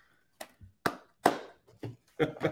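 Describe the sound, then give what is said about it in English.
A handful of sharp handclaps, irregularly spaced and moderately loud, like one person clapping briefly rather than a full crowd applauding. “when he first walks in, they're gonna give him a round of applause.”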